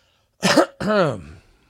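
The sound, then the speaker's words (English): A loud throat clearing in two parts: a rough, breathy rasp followed by a voiced, falling grunt, with silence around it and no speech. “Let me clear my throat.”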